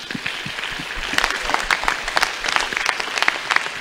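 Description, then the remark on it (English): A church audience gives each other a clap offering during a service, many overlapping hand claps forming a dense, bright patter that holds at moderate loudness for several seconds with no voices on top. “Would you give each other a Amen. Clap offering?”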